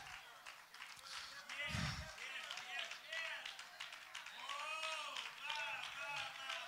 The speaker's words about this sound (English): Come on, clap your hands to the Lord and receive that. We receive it, Lord.